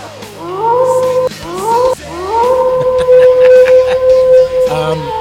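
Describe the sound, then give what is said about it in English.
A dog howls loudly in three long wails, each starting low and sliding upward before holding a steady, drawn-out tone, with some muffled background noise underneath. “He howled with it.”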